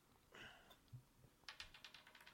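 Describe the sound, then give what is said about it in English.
Dice, including a ten-sided die rolled for damage in a tabletop game, rattle and tumble across a tabletop, a quick run of light, hard clicks that speed up and then scatter into smaller taps. Fairly quiet, with no voices. “I need more available open table real estate because it keeps rolling.”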